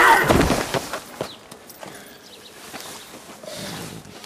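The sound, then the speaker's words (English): A sharp, loud slap across the face lands at the very start, followed by a few softer knocks and shuffling noises that fade into quiet. “I slapped you, I didn't whack you in the head with a shovel!”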